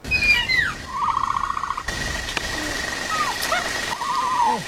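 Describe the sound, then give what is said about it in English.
A movie screech for the spitter dinosaur, built from layered calls of a swan, a hawk, a howler monkey and a rattlesnake: shrill sweeping cries and a warbling, trilling squeal over a steady hissing, rattle-like wash, repeating in bursts with no talking. “Was a swan, a hawk, a howler monkey, and a rattlesnake.”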